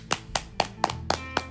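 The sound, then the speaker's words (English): Six sharp hand claps in a steady, even rhythm, fairly loud, with no voices over them. “Cue the claps.”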